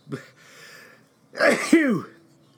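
A single loud sneeze: a breathy drawn-in build-up, then an explosive voiced burst that trails off with a falling tone. No speech around it.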